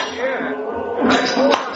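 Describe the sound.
Two sharp, ringing metallic clanks of a sledgehammer striking a railroad spike, about half a second apart, heard over a low murmur of voices.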